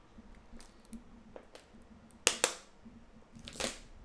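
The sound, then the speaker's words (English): A plastic water bottle crackles in a few sharp bursts, with two loud pops near the middle and a longer crinkle toward the end, over a quiet low hum. “By the way, sorry for the cracking of my water bottle.”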